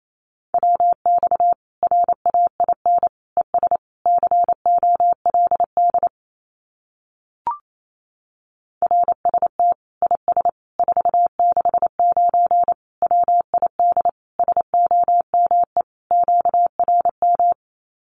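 Fast Morse code at 28 words per minute, sending common amateur radio QSO phrases as a steady mid-pitched tone, rapid dots and dashes in quick succession, broken by a pause of a couple of seconds with a single click before the keying resumes.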